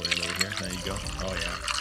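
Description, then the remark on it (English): Canadian rye whiskey from Dunrobin Distillery is poured into a glass, a short gurgling fill with a rising, glugging tone lasting a couple of seconds, with a voice faintly in the background. “And can I get you a nice glass of Canadian rye whiskey from Dunrobin Distillery's Grant?”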